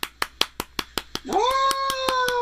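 Quick, steady golf claps, then a loud, drawn-out yell breaks in and holds at a high, even pitch while the clapping keeps going underneath.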